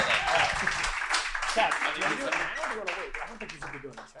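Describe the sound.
An audience breaks into sustained applause, a dense wash of many hands clapping at once, with voices calling out and talking underneath before it begins to taper off at the end.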